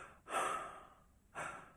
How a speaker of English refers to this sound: In fact, the moment they start doing the test, I start breathing deeply.